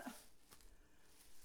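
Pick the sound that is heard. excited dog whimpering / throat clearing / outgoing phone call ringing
excited dog whimpering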